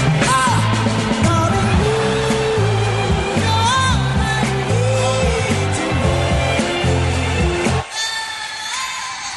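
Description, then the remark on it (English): A loud stadium crowd roars and yells over steady, brassy band music, the dense wash of noise holding strong before cutting off sharply near the end into a quieter murmur. “Until then, cue the crowd noise.”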